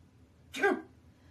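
A single sharp sneeze bursts out, loud and quick, then fades back into quiet with no talking.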